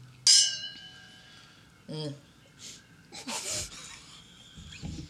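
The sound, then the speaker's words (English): A woman gulps wine from a glass: a bright glassy clink, then several wet, noisy swallows and slurps separated by breathy gasps, fairly quiet overall. “is glugging it down like a narwhal. She's slobbering over there.”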